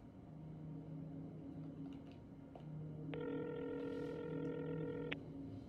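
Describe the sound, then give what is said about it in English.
A phone number is dialed: a few faint clicks, then a steady electronic telephone tone sounds for about two seconds, over a constant low engine-like rumble. No one speaks. “Oh, this one actually has a phone number to call.”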